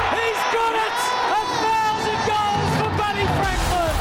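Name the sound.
stadium crowd cheering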